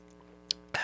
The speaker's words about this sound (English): All right, watch my sexy sip. Ready?